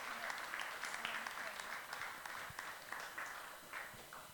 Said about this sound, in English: Let's give our volunteers a round of applause, shall we? Thank you.